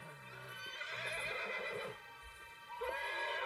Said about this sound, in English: I heard this terrible neighing from my horse, and so I ran in the dark and just discovered probably the worst thing possible.